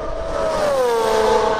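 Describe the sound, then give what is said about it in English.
The high-pitched engine of a 2021 McLaren MCL35 Formula One car screams steadily and loudly during testing at Portimao, its whining tone dipping slightly in pitch as the car passes on the track. No voices. “Colton Herta tested the 2021 McLaren at Portimao last week.”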